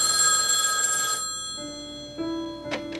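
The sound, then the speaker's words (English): A telephone bell rings loudly and briefly in a phone-call scene from the film When Harry Met Sally, its bright metallic trill cutting off after about a second, followed by softer steady line tones and a faint click. No one speaks. “Like there's a sequence of scenes in When Harry Met Sally where they're just getting along and they're just talking on the phone.”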